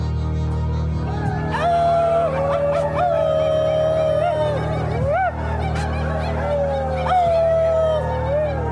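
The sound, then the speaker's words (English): Several people mimic coyote howls together, overlapping drawn-out wails that rise, hold and dip, fairly loud and continuous for the whole stretch over a low steady background hum. “And as we did not bring our pack of coyotes due to zoning regulations and the health department, etc., as we say farewell for now, if anybody wants to throw in their own coyote howls, we can kind of fake it.”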